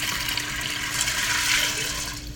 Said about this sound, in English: And now we're going to add 6 cups of water to the pot, and this is going to be how we soak them. We're going to put some water. I've got 4 cups here, and I'm going to have to go back and get 2 more cups.